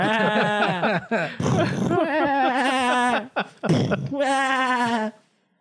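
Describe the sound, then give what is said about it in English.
A person imitates sheep, letting out several loud, wavering bleats one after another with brief breaks between them, for about five seconds. “So I was reading the comments and I was watching these people just lamb blast the, you know, Firaxis Games for it sounds like they're firing sheep at them.”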